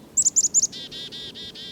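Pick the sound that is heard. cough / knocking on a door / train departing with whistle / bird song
bird song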